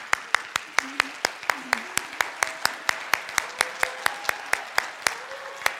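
Applause made of sharp, evenly spaced claps in a steady rhythm, roughly four per second for about six seconds, with faint voices murmuring underneath.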